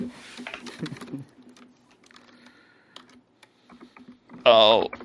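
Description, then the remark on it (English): A loud smashing crash of a disco ball bursts out near the end with a ringing, shattering tail, after a few seconds of scattered clattering and light tapping. “I was going to say you hear there's the sound no of a loud smashing crash. Noise over the radio.”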